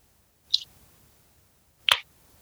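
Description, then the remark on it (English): Two cans of Reddish, a double red hoppy beer at 7.9%, crack open: a small, sharp click, then about a second later a louder, fuller pop with a brief fizzy hiss. No talking. “So let's crack these open.”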